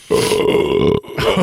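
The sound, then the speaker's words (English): A long, loud belch rumbles for about a second, breaks off briefly, then a second belch follows. The sound is deep, throaty and rough, with no talking. “this is a podcast where we talk about photographing yourself while belching.”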